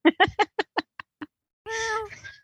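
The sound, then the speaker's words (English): A run of short, clipped vocal bursts fading in strength, then a drawn-out, whiny meow from a cat named Calliope that trails off at the end. “She's angry because I'm not paying attention to her.”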